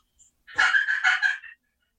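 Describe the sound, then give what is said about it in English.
A raspy imitation of a hen turkey call, a quick run of about four harsh, nasal yelps lasting around a second, with no other sounds around it. “How many hens do you hear doing this right here?”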